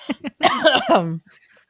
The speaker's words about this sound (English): Excuse me, COVID cough.